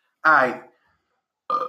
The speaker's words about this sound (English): I'm burping again. But, yo, as long as you caught it.